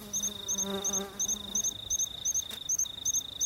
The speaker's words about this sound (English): Most of the forest birds have gone to bed now, but the insects are calling. Can you hear the insects buzzing in the background?